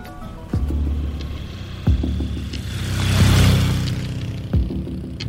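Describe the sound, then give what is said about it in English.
Steady low engine drone from inside a car on an 8-hour drive from Chiclayo to the Marañón Canyon in the Andean Highlands, with a swell of rushing road noise midway and a few sharp thumps as the vehicle jolts over bumps. No voices. “heading to the Marañón Canyon, 8 hours by car from Chiclayo, well into the Andean Highlands.”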